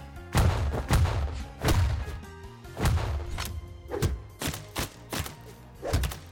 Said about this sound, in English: The sound effects and visuals are more than gratifying when you land a hit.